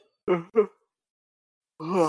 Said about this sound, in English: Big yawn.